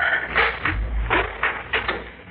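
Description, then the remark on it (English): The front door of Garth Dragman's home swings open, its hinges giving a series of short creaking, scraping pulses over a couple of seconds, with a low thud underneath and no voices. “Don't ring, Mrs. Dale. The door is open.”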